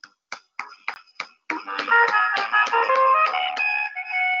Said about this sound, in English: Yes, snaps and claps.